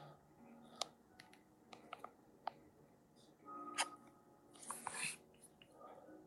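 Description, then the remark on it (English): Quiet, irregular computer keyboard typing as someone types in a secret word, with scattered sharp key clicks and a brief flurry of rapid taps near the end over faint background noise. “And typing in right now.”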